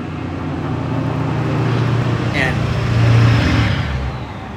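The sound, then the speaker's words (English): A loud truck rumbles past, its deep engine drone swelling to a peak around the middle and then easing off as it moves away. “Loud ass fucking truck.”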